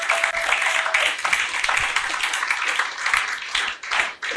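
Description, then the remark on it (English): Sustained applause from a large church audience clapping for a long-time church member, a dense, steady wash of many hands clapping at once with no talking heard. “Let's give Mommy a big round of applause.”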